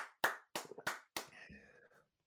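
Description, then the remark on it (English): One person stands and claps four times in a steady, even rhythm as applause for Paul White, each clap sharp and fairly loud, followed by a brief, fainter voice-like sound as the claps stop. “I'm standing and applauding.”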